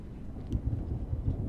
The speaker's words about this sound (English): As he spoke, thunder once again boomed on the horizon, and a flash of lightning filled the window with jagged light.